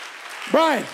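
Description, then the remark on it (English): An audience applauds steadily in a dense wash of clapping, and halfway through one voice rises above it in a loud, arching shout. “I'm saying if the hand clap ain't getting it, figure out what will.”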